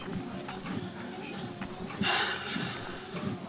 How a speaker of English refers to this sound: apologies for all my sniffling. That's the cross I must bear. Sinus problems.